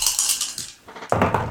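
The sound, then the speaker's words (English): Hard clattering and rattling of a physical die rolled across a table, a quick burst, a brief pause, then another louder clatter, alone with no talking. “Alright, in respect to the momentum pool, I'm actually going to roll a physical dice for this.”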